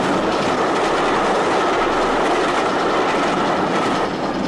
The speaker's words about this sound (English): Superman holds the bridge rigid until the train passes over.